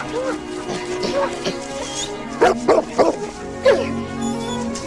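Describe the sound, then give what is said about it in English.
A dog barks and yips excitedly in a quick cluster of sharp barks, with whimpering, high whines woven between them over a steady background hum. “He was a puppy again. Reunited with his best friend.”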